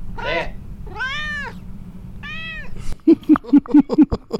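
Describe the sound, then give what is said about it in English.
A female cat meows three times, begging to be fed though she has already been fed, each cry drawn out with a rising-then-falling pitch and a slight pleading whine, followed by a quick run of short, choppy sounds. “She already was fed, but she does try to weasel because you're here.”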